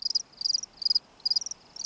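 Crickets chirp in a steady rhythm of short, high, trilling bursts, five pulses in quick succession, fairly faint and alone against a quiet background with no voices.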